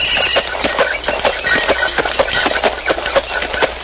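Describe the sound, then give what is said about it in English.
Steady clip-clop of horse hooves pulling a milk wagon delivering milk in 1896, a regular trotting rhythm with rattling wheels beneath and no voices. “In the year 1896, milk was delivered in a horse-drawn milk wagon.”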